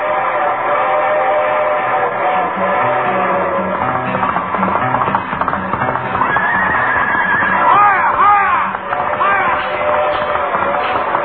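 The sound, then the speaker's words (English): A loud, steady rumble of a passing train, the Westbound Limited for California (the Pony Express), passing on the left, fills the whole stretch, with rhythmic clatter and sharp horse whinnies rising over it near the end. “The train which is about to pass us on the left is the Westbound Limited for California.”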